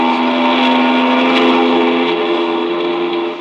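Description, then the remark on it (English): A ship's steam whistle blows one long, loud, steady blast, a rich harmonic tone that holds for several seconds with no break and no voices over it. “I couldn't hear you on account of the whistle.”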